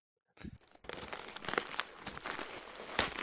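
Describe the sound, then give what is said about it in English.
A wrapped Christmas gift being unwrapped: continuous crinkling and crumpling of paper with a few sharp tearing rips, steady and fairly loud for about three seconds, with no talking. “I am going to be giving you my first gift upon this stormy Christmas. And I'm going to unwrap it.”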